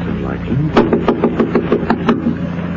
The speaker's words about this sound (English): I'll knock.